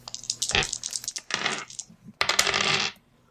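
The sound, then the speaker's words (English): Many dice clatter and rattle against a hard tabletop, a scattered spill of small clicks followed by a denser, louder burst as they tumble and settle, with no talking. “I got to find a lot of dice.”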